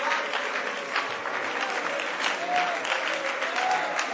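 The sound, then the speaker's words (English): A church audience claps their hands in a dense, continuous wash of applause that holds steady for several seconds, with faint voices and a soft sustained tone murmuring underneath. “I'm not going to be satisfied with a few folks moving to the front and a few folks clapping your hands.”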